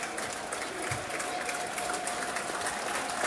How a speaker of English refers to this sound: I don't know what the applause is for. Is it for Johnny Neal? No, I don't know.